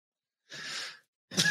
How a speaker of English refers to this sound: Oh, shit. You smoking Mary J over there or some shit? My boy coughing. No, I'm just kidding. This is, you know, we're smoking. It's illegal. The vaporization. It's water and a battery, right? That's what makes vapor.